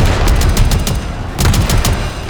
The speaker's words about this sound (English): The alarm sounded, and almost immediately, HMS Jackal's anti-aircraft gun opened up.